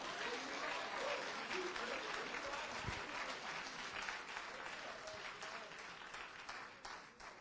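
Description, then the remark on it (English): An audience breaks into sustained applause, a dense, steady patter of many hands clapping that stays loud for several seconds before gradually thinning out toward the end. “Woo, you ain't clapping now.”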